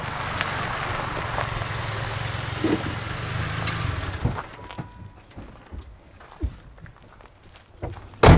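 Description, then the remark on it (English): A pickup truck's engine rumbles on gravel as it pulls into the empty gravel parking lot of a roadhouse in Calabogie on a warm, clear December day, then cuts off after about four seconds, leaving scattered crunches and clunks and a sharp thump at the very end. “I'm recording room tone, the sound that this empty gravel parking lot is making, when Kim Cooper's truck pulls in”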